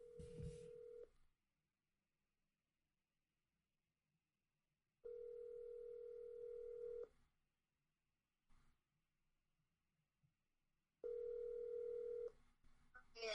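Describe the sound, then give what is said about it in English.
A phone call to the speaker's mother rings out: a steady electronic ringback tone sounds in bursts of about two seconds, separated by long quiet gaps, three times in a row. “I'm calling my mom right now.”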